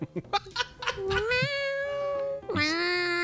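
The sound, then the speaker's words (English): After a few short clipped sounds, a person's voice lets out two long, drawn-out imitation cat meows, loud, the second rising sharply before trailing off. “I hold on to the top of the lid and just go, meow.”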